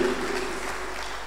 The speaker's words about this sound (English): clap for Jesus, clap for God. Awesome. It's beautiful.